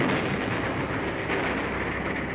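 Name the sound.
explosion sound effect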